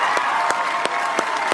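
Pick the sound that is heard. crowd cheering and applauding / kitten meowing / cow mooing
crowd cheering and applauding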